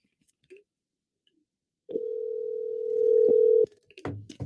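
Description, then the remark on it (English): A steady telephone dial tone hums for nearly two seconds as someone places a call through the phone, clear, then cuts off abruptly, followed by a few faint clicks and rustles. “Oh, I'll call through the phone. I got the phone number.”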